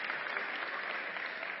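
An audience claps steadily, a dense, even wash of many hands that holds at a fairly loud level throughout, with no voices standing out.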